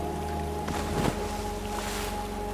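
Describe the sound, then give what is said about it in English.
A single brief splash as something falls overboard from a fishing boat into the water, heard over the steady droning hum of the boat engine and light wind, with no one speaking. “Just as he reached his hand for the night crawlers, that's when we heard the splash.”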